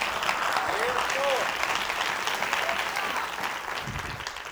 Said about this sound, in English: Give God another hand clap.